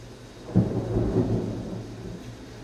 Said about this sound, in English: Thunder? Lightning? I told you. There's a storm coming.